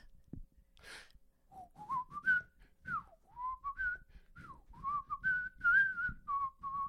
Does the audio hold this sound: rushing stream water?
no